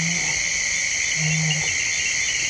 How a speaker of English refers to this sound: The nighttime world along the forested River Mara is wide awake with giant flying insects, chirping bats, chiming frogs, and the occasional hungry hippo.